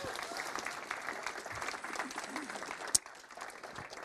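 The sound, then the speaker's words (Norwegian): An audience applauds a reader after a Bible passage from Matthew, a dense patter of many hands that holds for several seconds, with one sharper clap standing out near the end before the applause thins slightly. “Gi henne en god applaus.”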